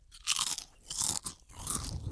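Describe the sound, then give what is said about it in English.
Loud crunching of a potato chip being chewed, three bursts of crisp, brittle crackling separated by short pauses, with no talking. “Now, if I were to eat the chips, you would probably be able to hear that because there's a crunching involved.”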